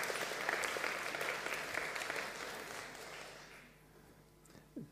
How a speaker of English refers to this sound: Yeah, give her a clap.